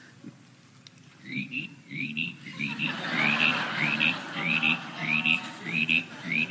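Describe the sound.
A person's voice, during a church sermon, mimics a chorus of croaking frogs, with repeated rhythmic croaks and chirpy upper calls that grow louder and denser, steady.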